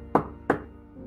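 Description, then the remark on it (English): A man in heavy armor steps forward and knocks twice on a door, about a third of a second apart, each a sharp hollow thud that dies away quickly, followed by quiet. No one speaks. “Then he steps forward and knocks.”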